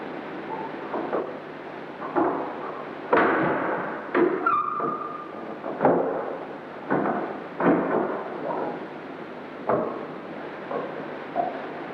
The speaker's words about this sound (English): It was during this period the ghost decided to make its presence known. And to our utter astonishment, we recorded the sound of it opening a door. But a door which doesn't exist.